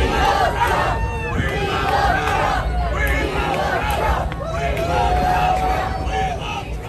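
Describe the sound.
A large crowd shouts and yells at a Ron DeSantis campaign event while he flips pork chops, many overlapping voices forming a loud, steady roar, with raised cries of "We want Trump" and "We love Trump" rising above it throughout.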